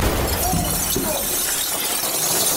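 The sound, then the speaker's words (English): A glass piggy bank being smashed with a hammer: a loud, harsh burst of shattering glass that carries on as a dense crunching and tinkling of shards for a couple of seconds. “The glass piggy bank is stronger than we thought, but it still cannot withstand the hammer of”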